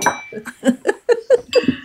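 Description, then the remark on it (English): Glasses clink together several times in quick succession in a toast, bright ringing taps, with some faint clatter between them. “And can I just clink my glasses again to say thank you?”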